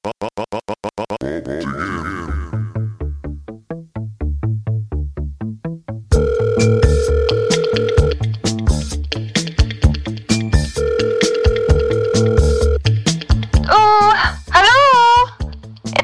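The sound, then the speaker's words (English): An electronic telephone ringing set to a bouncy beat: steady beeping tones over rhythmic bass pulses, ending with a loud warbling trill. No one speaks. “Well, without further ado, let's hit the phones.”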